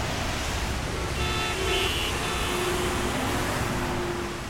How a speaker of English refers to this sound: And today, we still drive our cars along that same straight Roman road.